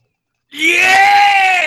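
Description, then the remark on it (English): After a brief silence, a loud, sustained human yell bursts in and holds steady to the end, a single drawn-out shout with a strong, bright voice. “And there's just a disembodied yell coming from somewhere.”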